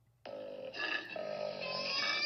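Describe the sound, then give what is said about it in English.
A moose call: one sustained, raspy, moaning bellow with rich harmonics that starts abruptly, shifts pitch slightly partway through, and grows louder until the end, with no talking. “That's a moose.”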